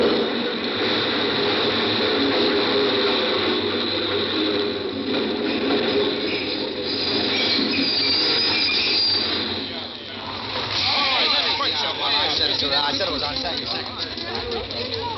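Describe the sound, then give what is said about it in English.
A subway train roars into a station in a steady, loud rush, with screeching metallic wheel squeals rising toward the end as it pulls in. Muffled voices can be heard under the din. “But what I really wanted to do was to throw myself in front of that train.”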